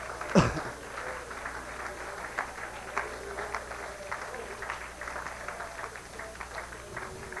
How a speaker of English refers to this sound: Amen. Let's give the Lord a good hand clap tonight.